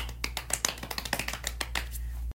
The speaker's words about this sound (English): So welcome to the first of many Lily's Hotlines podcast. Round of applause.